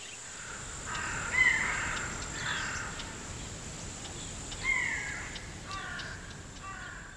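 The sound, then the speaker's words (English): Crows caw repeatedly, harsh calls coming in loose bursts of one or two at a time, over a steady high insect-like hiss. No one speaks. “And one scary pumpkin head go boo boo. And scare all the crows away.”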